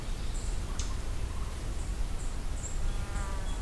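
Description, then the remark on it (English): A junco gives a series of short, sharp smacking chips, repeated every half second or so over a steady low outdoor rumble. “Smack call from probably a Junco.”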